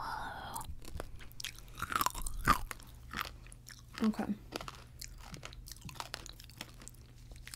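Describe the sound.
Crunchy Colombian snacks being chewed, with irregular sharp crackling bites and softer mastication between them over a low steady hum; a voice says a single word partway through.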